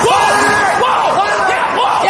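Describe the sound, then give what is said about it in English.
Curling players yell loudly during the big five-point shot for the U.S. team on a Saturday morning, several voices shouting over one another in rising and falling calls that stay loud and continuous for about two seconds. “There's all kinds of yelling at each other.”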